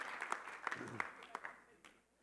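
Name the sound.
audience applauding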